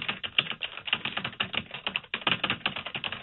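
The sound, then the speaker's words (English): Rapid, steady typing on a computer keyboard, a dense run of key clicks with only a brief pause midway, and no voices. “What are you typing?”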